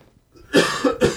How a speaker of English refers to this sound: Where I have to cough. Yeah, I was looking for the cough button earlier because I'm used to being in the studio.